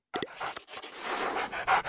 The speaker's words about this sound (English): And today, we feature the third most popular dog breed in South Africa, the Bulldog. Here's what Animal Pets' Dogs 101 says about these snorty, entertaining, and lovable dogs.